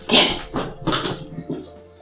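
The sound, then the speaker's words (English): A female dog near a toy makes three short, scratchy vocal noises spaced roughly half a second apart, with faint background rustling between them. “There's a ding dog over here.”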